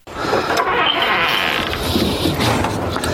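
The front door of a house swings open with a long, loud creak, a continuous grinding squeal of the hinges lasting a few seconds with no talking.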